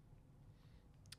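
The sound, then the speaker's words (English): A single soft mouse click on a link near the end of a quiet stretch, faint against a low background hum, with no voices. “Yeah, and of course, I'm clicking on 17 different links here, and none of them is pulling up the movie list one.”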